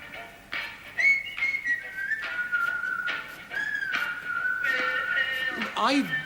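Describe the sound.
Someone whistles a slow, wavering tune in imitation of old gramophone music, steady and mid-pitched, broken by short crackly clicks and ending in a quick swooping slide.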